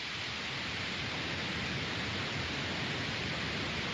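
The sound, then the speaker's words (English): A steady wash of static on a phone line, an even, unbroken hiss with faint crackle running for the whole stretch. No voices, just the constant noise at moderate loudness. “I'm getting a little bit of static here.”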